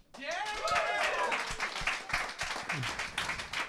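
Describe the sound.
An audience at a show claps steadily after a roast of Helen Keller is announced, a few people not clapping; a dense patter of many hands, with voices calling out and cheering over it for a few seconds.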